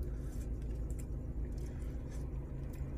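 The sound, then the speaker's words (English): A car engine idles steadily throughout, turned on so the battery doesn't run out, a continuous low rumble with no speech, plus a few faint clicks and rattles above the hum. “Turn the car on so the battery doesn't run out.”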